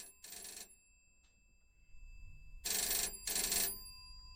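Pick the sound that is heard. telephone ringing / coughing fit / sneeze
telephone ringing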